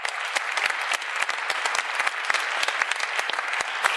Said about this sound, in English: Please give him another round of applause, folks.